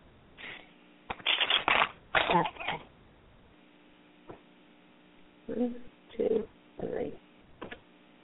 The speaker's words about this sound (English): shuffle.